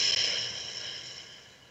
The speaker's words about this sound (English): Take a deep breath in through your nose. And then see how big you can make your belly. Lots of oxygen. And then out through your mouth, like through a straw.